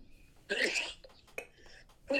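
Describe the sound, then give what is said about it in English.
A single sharp sneeze bursts out, followed by a few brief breathy noises and a second short rush of breath near the end. “Bless you.”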